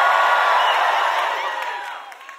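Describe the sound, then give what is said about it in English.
A large indoor audience shouts and cheers all at once, a dense roar of many voices with a few whoops, loud at first and gradually fading over a couple of seconds. “Everybody shout some kind of way. Just shout some kind of way.”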